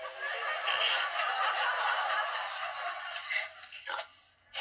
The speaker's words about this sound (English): I guess that means hi in pig language.